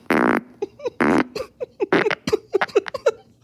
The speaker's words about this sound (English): Fart number nine.